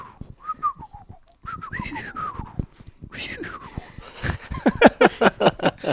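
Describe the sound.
A person whistles an imitation of a bald eagle call: a series of short, high chirps sliding downward in pitch, repeated several times, followed by rapid, breathy bursts that grow louder toward the end.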